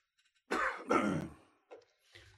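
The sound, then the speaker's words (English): A person clears their throat twice in quick, forceful bursts, followed by a short softer rasp and a faint breath as the sound trails off. “I apologize, I have to clear my throat.”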